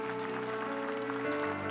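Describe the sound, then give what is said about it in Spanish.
Steady audience applause for eight people fills the room, a dense continuous patter of many hands clapping over sustained keyboard chords that shift partway through. “¿Podemos dar un aplauso bien fuerte para 8 personas sabias?”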